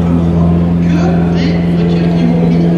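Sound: engine revving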